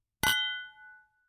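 A single bright clink of glasses touching in a toast to Darkie Kelly, clear, its high ringing tone lingering and fading over about a second. No one speaks.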